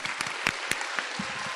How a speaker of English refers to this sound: Clap your hands together and be a super fan and enjoy this year's Poetry Slam.